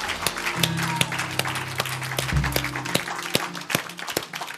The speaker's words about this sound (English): Man, let's give him one more hand clap and a shout of praise.